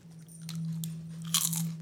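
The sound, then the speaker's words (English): Crisp crunching of crisps being bitten and chewed, with a few sharp cracks, the loudest burst near the end, over a steady low hum and no talking. “Compared to the Doritos, to the alternatives, but listen to this crunch.”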